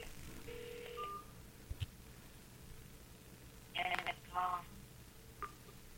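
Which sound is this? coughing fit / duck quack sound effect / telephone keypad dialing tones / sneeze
telephone keypad dialing tones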